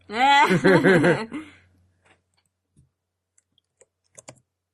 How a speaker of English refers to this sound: Are you typing in most talkable villain?